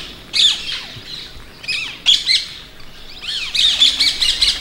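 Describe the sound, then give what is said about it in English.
Ringneck parakeets give loud, shrill shrieking calls in harsh bursts, a few spaced squawks at first, then a rapid run of piercing notes at the end, with no talking. “We have had a sudden explosion in the population of ringneck parakeets.”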